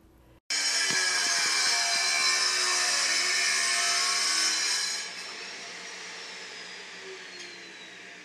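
A power tool motor kicks on abruptly and runs loud with a steady, high-pitched whine, dropping a little in volume partway through but continuing to the end, with no talking.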